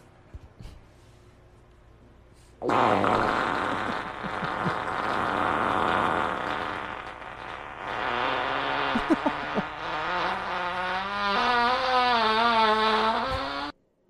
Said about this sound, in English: So I guess this is the original fart video.